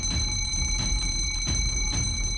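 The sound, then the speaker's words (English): A big bell rings continuously with a bright, sustained metallic tone and strong overtones. Regular strikes land about every half second, loud and steady, with no voices. “At the point Jarell races through the door, you hear the sound of a big bell ringing.”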